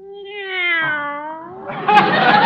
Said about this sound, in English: Meow. How did you sleep? Meow, meow. I'm glad.